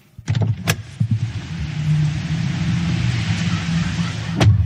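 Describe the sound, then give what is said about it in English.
A car cruises at speed along the Western Highway toward Maryborough, with a steady low engine rumble and broad road and wind hiss, a few brief clicks and thumps near the start and a sharp knock near the end. “So come on, jump in your car, head straight down the Western Highway, and let's see exactly what Maryborough has to offer.”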